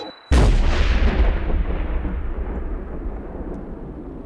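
explosion

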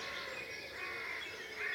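blackbird singing at dawn

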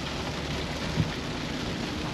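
rain falling

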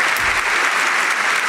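applause sound effect

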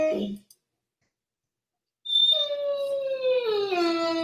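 dog howling

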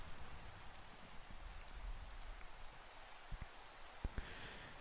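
rain falling

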